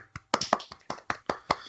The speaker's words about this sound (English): Congratulations. Small round of applause.